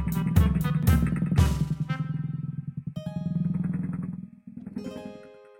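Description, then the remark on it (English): A small motor scooter engine revs in a few quick bursts, then settles into a steady buzzing drone as Little Red rides her scooter all the way home, with no voices. “Then Little Red gave Grammy and Wolfie a hug goodbye, and she rode her scooter all the way home.”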